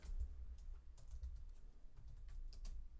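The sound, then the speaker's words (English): Quiet, irregular key clicks from someone typing on a computer keyboard, scattered taps over about three seconds against a steady low background hum, with no voices. “Can't see my keyboard.”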